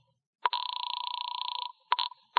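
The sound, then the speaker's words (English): A telephone bell rings with a rapid metallic trill, one long ring of about a second followed by the clipped start of the next ring. No one speaks. “And I went back inside to the phone.”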